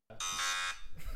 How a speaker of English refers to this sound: I love buzzer. The buzzer is the best thing. I love telling you you're wrong.